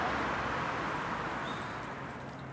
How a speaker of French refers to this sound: Il y a mon bus.